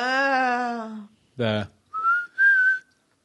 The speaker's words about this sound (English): I do like that he was doing the same whistling thing as from Heroes and Villains with the Dark Dwarves.